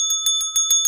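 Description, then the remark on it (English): A bright bell rings rapidly over and over, a quick string of sharp metallic dings with a sustained ringing tone underneath, loud, with no voices. “Ding, ding, ding. Ding. Where's for my what? Bells?”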